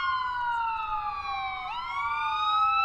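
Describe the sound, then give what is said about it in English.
A police siren wails steadily, its tone gliding slowly downward before abruptly dipping and climbing again, with no voices over it. “That's when the police arrived and they were arrested.”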